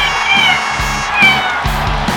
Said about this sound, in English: And now, the star of Life with Bucky, her royal buckiness, the world's most amazing cat, Bucky.